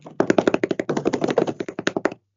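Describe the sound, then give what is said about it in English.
A rapid drum roll tapped out on a hard surface, a flurry of quick, fairly loud, hollow knocks lasting about two seconds before stopping abruptly, with no voices over it. “Now, drum roll, please.”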